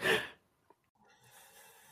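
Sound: yawn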